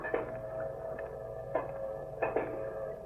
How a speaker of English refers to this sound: What you listening to? That old train calling. Just a calling. Yeah, ain't no sound can say more than a train calling.